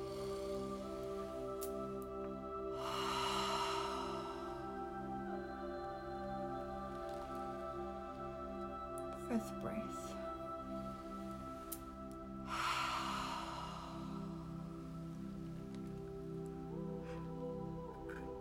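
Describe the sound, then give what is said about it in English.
Two slow, deep breaths during a guided breathing meditation, each a long airy rush rising and fading, spaced several seconds apart over a steady, sustained musical drone. “bringing in new code, breathing in, breathing in, feeling with every breath out that you're being integrated, activated. 4th breath in.”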